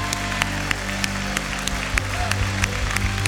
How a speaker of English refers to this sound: Would you stand? Let's stand with them. Let's stand beside them. Let's cheer them on a little bit more. Come on.